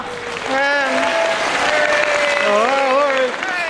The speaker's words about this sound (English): Huge, warm round of applause almost. Lovely, yeah. I was really surprised by it. But it wasn't intrusive as well. It's a nice little woo. It's warm, It's not the sort of sustained. It doesn't get in the way.